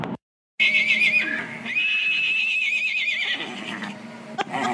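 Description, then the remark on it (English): A miniature horse named Liam whinnies loudly, a long quavering high-pitched call in two sustained bursts after a brief silence, with no talking. “And here is a recording of my mini Liam giving Chili a run for his money.”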